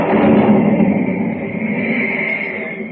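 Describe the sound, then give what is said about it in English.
A loud, rolling rumble of thunder in a storm over dark, turbulent sea waters, following jagged bolts of lightning. It roars steadily for about three seconds, thick and low with a rough, hissing edge, easing only slightly toward the end. No voices are heard. “Jagged bolts of lightning rip across the blackened sky, followed by the crashing boom of thunder.”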